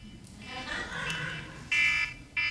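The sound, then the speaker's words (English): An electronic timer alarm beeps in loud, steady high-pitched tones, one long beep followed by the start of another, after a stretch of quiet talking in the background. “There's my timer.”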